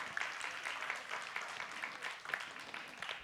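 A burst of applause from a small group for a person called up to help the speaker, steady overlapping claps with a bright, crackling texture that holds throughout without fading.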